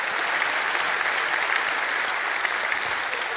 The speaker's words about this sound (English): Could we even clap this morning? Could we clap for Jesus? Could we clap for Jesus this morning? Hallelujah!